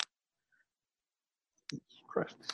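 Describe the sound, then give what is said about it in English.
A quiet sip from a drink: a small click, then a brief slurping draw and a soft breathy swallow after a moment of near silence. “Sips drink.”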